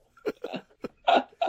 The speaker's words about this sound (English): I'm hiccuping on my rage